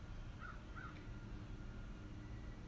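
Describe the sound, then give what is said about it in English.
A bird perched in a tree gives two short, harsh calls in quick succession over a steady outdoor background hiss; no one speaks. “Well, we had a bird on the podcast, ladies and gentlemen.”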